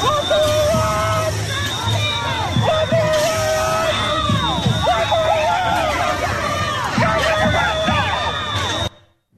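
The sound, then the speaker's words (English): A large protest crowd at the White House fence yells and chants in a dense, overlapping roar of many voices, loud, with individual shouts rising above the din for about nine seconds before cutting off abruptly, as the group tries to break in and tear down the fence on January 13th. “Big group of pro-Hamas, pro-Houthi rebels tried to break into the White House and tear down the fence.”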